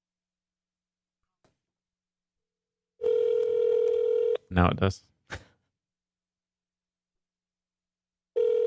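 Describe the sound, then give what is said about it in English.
A phone line's ringback tone from an outgoing call placed by asking Siri: a steady electronic buzz of about a second and a half, then a long silence before it starts again. Someone says a few words between the rings. “This guy never answers his phone.”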